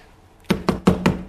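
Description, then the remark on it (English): Four firm knocks on a hotel owner's wooden door at about 1 or 2 in the morning, by four men, a chief of police with three officers, in a quick, steady rhythm, fairly loud, with a brief hollow resonance after each rap and no voices. “there's a knock on the hotel owner's door.”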